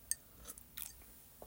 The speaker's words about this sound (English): Hopefully you didn't hear that disgusting sip and swallow.